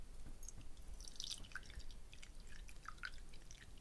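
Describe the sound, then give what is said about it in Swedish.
Coffee being poured into a cup, heard as quiet, irregular splashes and drips of liquid over a few seconds, with no one speaking. “Häll inte över hela din säng.”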